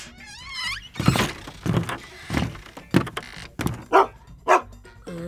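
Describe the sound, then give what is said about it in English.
A junkyard dog barks about seven times in an uneven series of sharp, fairly loud yelps, preceded by a brief high wavering whine and ending with a short whimper. “It's always good to have a junkyard dog as a friend.”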